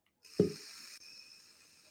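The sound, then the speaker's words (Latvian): An airy hiss of air being drawn through the slightly unscrewed airflow opening of an MTL vape tank, with a brief low thump near the start, then a steady breathy draw that continues quietly to the end. “Ā, paskruja vaļā, gaiss vairāk sanāk, tā skruja galīgi ciet.”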